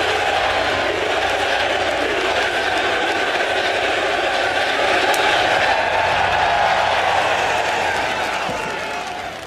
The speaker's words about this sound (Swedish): Och det som är det här är ju helt unikt. I en idrottare ska vara tyst och lugn när spelarna slår. Så väljer spelarna att hetsa publiken, att sjunga med och jubla med att de slår.